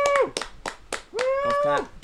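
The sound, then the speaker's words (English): A few soft, evenly spaced hand claps, a light polite golf clap as God of War is announced as Game of the Year, while voices cheer with drawn-out hoots over the top. “Golf clap.”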